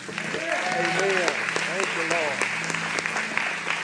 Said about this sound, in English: If you're watching online for the first time or joining us, that hand clap was for you too.